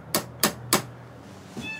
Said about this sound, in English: That's their cat, Oliver. They have several cats, all named after Dickens characters.